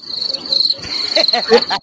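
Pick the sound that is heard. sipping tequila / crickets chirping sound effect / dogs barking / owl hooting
crickets chirping sound effect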